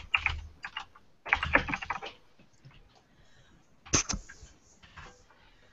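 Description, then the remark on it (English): Bursts of rapid typing on a computer keyboard as notes are typed, fairly loud, with quick clusters of clacking keys separated by short pauses and a few scattered single taps. No one speaks. “I'm including show notes here. That's what all the typing is.”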